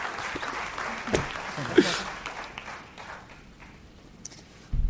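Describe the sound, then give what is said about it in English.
An audience applauds as California Senator Kamala Harris, Vice President Mike Pence and Libertarian candidate Spike Cohen are welcomed, a dense, crackling wash of hand claps that peaks early, then gradually thins and fades, ending with a brief low thump. “Clap for that, you stupid bastards.”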